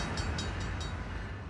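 A train passes through the town of Helena at night, rolling past with a steady low rumble, and a quick run of rhythmic metallic clacks sounds from the wheels early on. There is no talking.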